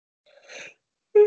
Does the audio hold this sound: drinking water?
no